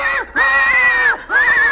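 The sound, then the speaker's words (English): A loud horse whinny in three drawn-out, wavering cries, each rising then dropping off at the end, with brief gaps between them and no talking. “That horse does hate other plugs.”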